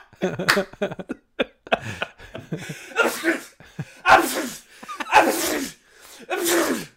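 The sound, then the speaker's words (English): Someone forces out a series of fake sneezes: several loud, breathy bursts in a row after some quick sharp intakes and clicks, with short pauses between them. “Actually, you're triggering my sympathetic sneeze impulse.”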